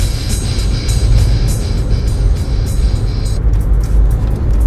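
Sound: car interior road noise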